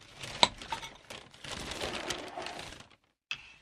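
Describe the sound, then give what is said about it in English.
A sharp plastic snap as a bottle of Conscious Ketchup is opened, followed by a stretch of crinkly handling and rustling, a brief pause, then one more quick click. No one speaks. “Yeah, let's crack it open.”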